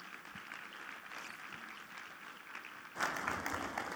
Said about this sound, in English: Let's give an applause for her.